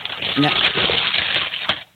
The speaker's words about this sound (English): is that you crumpling up paper in the background? No, sir, that is not me.